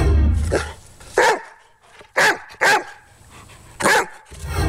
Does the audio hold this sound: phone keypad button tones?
no